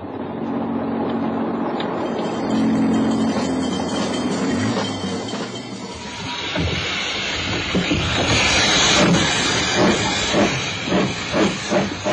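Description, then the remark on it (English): A train rolls into a station with a loud steam hiss, rumbling wheels, then rhythmic clanking and brake noise as it slows; no voices. “Passengers on that train, I see.”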